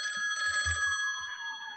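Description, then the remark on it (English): The phone of the Books Boys show rings with a steady, high electronic trill that holds for the whole moment, clear, with a few soft low thumps underneath. “I think I hear the phone ringing for a second time today.”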